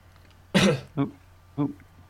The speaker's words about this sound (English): That was actually a burp, but I shielded it with a cough because I don't want people to hear me burp. Because it's not professional.